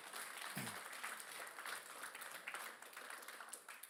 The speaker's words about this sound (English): And if there's anybody in here, would raise your hand. Just give them a hand clap, guys. Thank you so much for that.